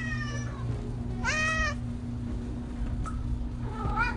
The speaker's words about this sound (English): Oh, this is what a cat sounds like when he's asking for food constantly.